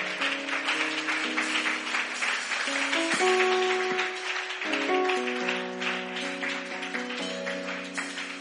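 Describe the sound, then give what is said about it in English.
An audience claps steadily and continuously for a man coming forward to be prayed with, a dense crackle of many hands, while sustained keyboard chords shift underneath. No one speaks. “Let us clap for him as he comes.”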